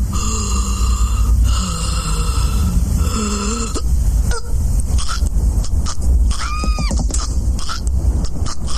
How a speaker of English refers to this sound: Maggie got too scared and she was choking Bart to death.